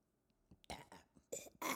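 A burp breaks out in a few short, raspy gulping bursts over under two seconds, loud and rough against a quiet background, with no talking.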